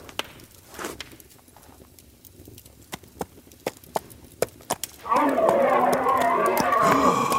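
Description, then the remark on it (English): A horse's hooves clip-clop at a slow, steady walk, each sharp hoof strike distinct, before a loud, sustained vocal sound suddenly takes over near the end. “Now fetch the damned horse.”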